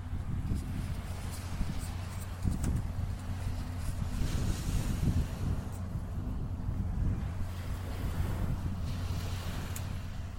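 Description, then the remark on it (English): Continuous rushing wash of ocean waves on an island beach, steady and fairly loud, with wind buffeting the microphone and low rumbling throughout; no clear individual breaks stand out. “We are on the beach and it's very nice and calming. You can hear the water.”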